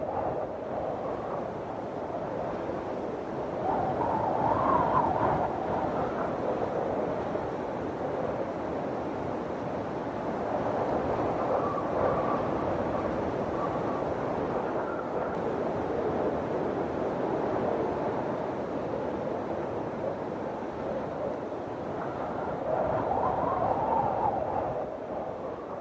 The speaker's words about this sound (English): Storms and severe weather episodes often worry people or scare them, but as winds dissipate, they can have an expected benefit. Winds transform into relaxing sounds of whooshing and buffeting breezes.